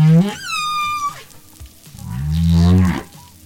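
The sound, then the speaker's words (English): A high, sweeping whistled call with rich harmonics gives way to a deep, rising moan, song units of New Caledonian humpback whales sounding loud with no talking. “They said New Caledonian humpbacks learned the exact sounds made by whales from Australia's east coast, and the songs go something like this.”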